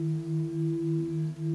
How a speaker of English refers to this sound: So that is a Himalayan singing bowl.